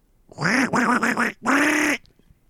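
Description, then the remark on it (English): A person does a loud duck imitation: two strong quacking bursts, the first wavering with several pulses, the second a long, buzzy, sustained quack, with no other talk. “So I believe it is quack time, and I think it might be your quack time.”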